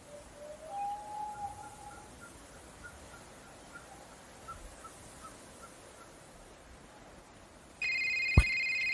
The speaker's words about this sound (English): Wait a second, what's this? Your phone! You have signal up here, of course. I wonder who's calling.